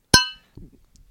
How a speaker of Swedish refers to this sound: Skål då